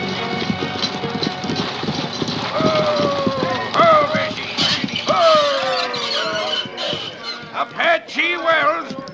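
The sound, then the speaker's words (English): Stagecoach horses trot along with a steady, rapid clip-clop of hooves, loud, amid a busy mix of rumbling movement and occasional raised voices calling out. “Folks, we gotta change horses.”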